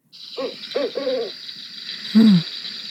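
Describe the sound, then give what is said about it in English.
A barred owl hoots its mating call, a rhythmic series of low notes, three quick hoots followed after a pause by a louder, drawn-out descending call, heard over a steady high insect hum. “That was it. Yeah, that's the barred owl.”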